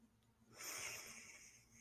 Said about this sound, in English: let's take a deep breath. Breathe in.